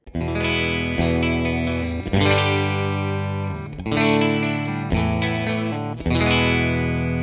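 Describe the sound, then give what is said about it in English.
An electric guitar, a Strat, on its bridge pickup with the Clarksdale pedal off, amp bass at 3 o'clock, mids near 2 to 3, treble and gain at about 9 o'clock, strumming about five sustained chords that ring out fully, bright with a slight amp grit, and no one talking. “So without the Clarksdale on, here's my bridge sound.”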